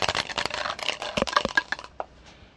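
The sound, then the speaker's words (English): A six-sided die drops into a cup of coffee, making a quick cluster of sharp clinks and rattles against the ceramic that fades after about two seconds. No one speaks. “One of the dice fell in my coffee.”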